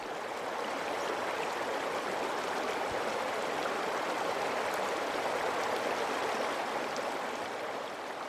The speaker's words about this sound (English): A little further upstream, I spot a hole in the rocks, carved by the brutal torrents of the river at high water, big enough to fit 4, maybe 5 people in, if you're brave. I look through it and see the river rush by, gurgling and glugging.